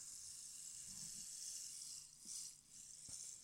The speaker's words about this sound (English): The closest approximation you'll get. Rain stick.